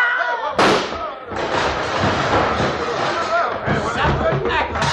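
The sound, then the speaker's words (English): A single loud gunshot, fired during a dispute over a card game pot, cracks out early, followed by a burst of excited crowd chatter and commotion that continues loudly to the end. “Duke, who plugged Tim? I did, Chad.”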